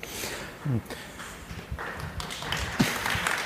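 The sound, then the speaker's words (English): A low, steady patter of applause, many hands clapping in a dense, crackly wash. A few louder individual claps stand out, with faint voices murmuring underneath. “Your applause.”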